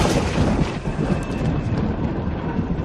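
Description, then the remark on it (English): A loud rumble of thunder rolls on steadily for a few seconds, deep and broad with a crackling texture, and no voices over it. “What's the matter? Scared of a little lightning?”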